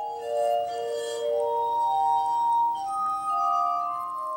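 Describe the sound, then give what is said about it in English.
Composer William Zeitler plays a glass harmonica, its bowls on an iron rod spun by a treadle while fingers rub their rims: a slow, sustained melody, pure ringing tones overlapping and shimmering with a soft, ethereal glow, steady with no voices. “That was composer William Zeitler playing the glass harmonica.”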